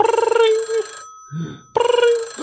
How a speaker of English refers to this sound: You hear in this like kind of pause bit of time, you hear a phone ring.